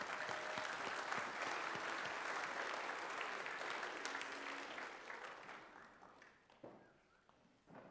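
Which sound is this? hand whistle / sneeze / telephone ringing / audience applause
audience applause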